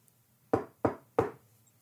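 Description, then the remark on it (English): Three firm knocks on an office door, evenly spaced, each a sharp thud with a short resonant decay, against a quiet low hum. “No, the members of New Vegas can just knock.”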